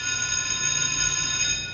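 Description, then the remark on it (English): A class bell rings continuously for a couple of seconds, a steady, bright metallic ring with a faint low rumble underneath and no voices. “The bell has rung and class is in session.”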